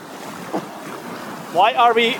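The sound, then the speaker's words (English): A steady, broad hiss of ocean surf rolls on continuously in the background, and a voice cuts in over it for the last second. “The beautiful white noise behind us is the ocean”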